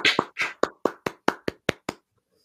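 A quick run of about nine or ten sharp hand claps in a steady, even rhythm, fairly crisp and bright, then silence. No one speaks.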